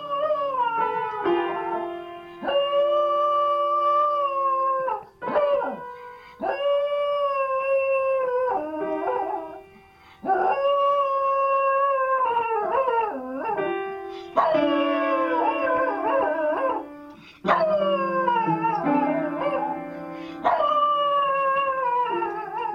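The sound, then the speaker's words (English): A poodle howls loudly and nearly continuously in long, wavering, sliding notes, broken by brief pauses, while the poodle itself strikes piano keys in scattered clusters beneath the howls. “This is all the dog playing the piano and making the noise.”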